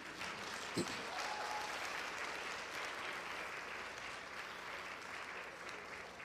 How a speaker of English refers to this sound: But you chose to be in the house of the Lord on Father's Day. So good for you. And ladies, I think we should give these men a round of applause.